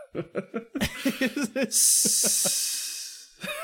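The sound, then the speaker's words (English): A voice imitates a hiss: a long, steady breathy hiss lasting nearly two seconds, preceded by a burst of rhythmic chuckling and followed by a brief laugh. “yeah, get the hiss.”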